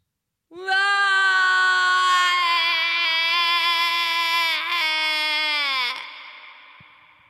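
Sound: human scream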